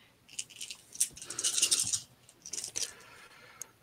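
Crisp clattering of eight dice tumbling across a table for a game attack roll, a longer rattling burst followed by a shorter second roll and a final small click, with no one speaking.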